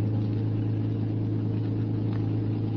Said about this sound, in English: I got in the back of the car and lay there on the floor and waited. Finally, they came out. The car started.